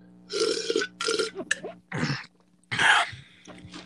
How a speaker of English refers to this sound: Now, today, we're doing pickle juice slurping.